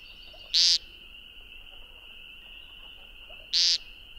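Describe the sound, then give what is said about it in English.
A spring peeper frog chorus holds a steady high-pitched drone, broken by two loud, piercing peeps from one frog about three seconds apart. “A peeper choir turned on, then off.”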